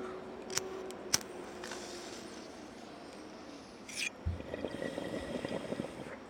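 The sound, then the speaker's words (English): A few sharp clicks, then a low, steady gurgle of water bubbling through a bong starts partway through and continues to the end, moderately loud. “This is a really, like, low-sounding bong, by the way, guys. It's like no yeah. bubble it's like, noise.”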